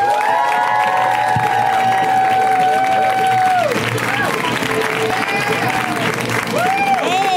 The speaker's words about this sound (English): So you guys, extra crazy round of applause for this amazing comic slash responsible dog. Sitter! Let's hear it for Janine Brito!